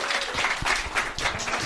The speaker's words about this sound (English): So, thanks a lot. And give a round of applause for Kevin McGahern and Carol Spine.